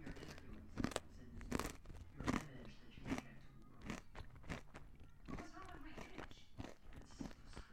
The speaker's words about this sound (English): I got some chocolate on the mic. Everyone's going to click off. I'm going to chew with my mouth closed.